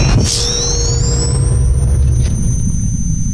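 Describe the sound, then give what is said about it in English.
A steam engine named Steamheart roars to life after its ignition lever is cranked, with a loud, steady low rumble, while a high whine climbs in pitch over the first couple of seconds and then holds a constant tone. No one speaks. “My baby roars into life around us, humming with energy as I illuminate their faces.”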